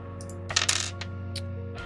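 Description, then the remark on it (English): Two dice clatter across a hard tabletop in a quick burst of sharp clicks and taps that trails off into a few lighter knocks, over a low steady hum. “That is my best estimate looking at the two dice I'm looking at.”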